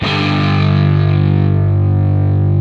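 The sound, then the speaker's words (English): A single electric guitar G power chord played with distortion and no effects rings out loud and sustained, thick and buzzing with steady harmonics, held for a couple of seconds without fading. “This is just a G power chord with some distortion, but no effects.”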